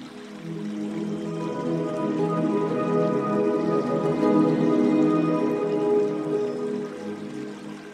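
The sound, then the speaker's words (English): A river flows steadily, its continuous rushing and burbling water holding at a moderate, even level throughout, with no voices. “Now let's head down to the river to do some overthinking.”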